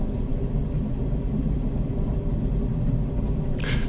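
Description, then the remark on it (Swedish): A heavy, steady low rumble of a train, continuous and loud throughout, with a brief hiss rising near the end. No one speaks. “Tåg. Ja, det är tåg.”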